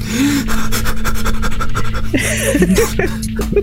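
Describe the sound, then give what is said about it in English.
Heavy, rapid, loud panting breaths pushed through an open mouth, in a rough continuous rhythm with a few brief voiced catches near the end. “No mouth breathing.”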